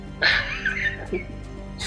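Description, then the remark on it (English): A person mimics a dog with a single loud, drawn-out bark-like 'woof,' followed by a brief quieter vocal sound and low background hum. “And the dog is like, woof.”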